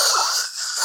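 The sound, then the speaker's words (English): A voice imitates snoring with one short, breathy, raspy inhale, fairly loud, lasting under a second with no other talking. “just snoring next to me.”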